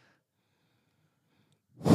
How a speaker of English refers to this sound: ASMR, are you breathing hard?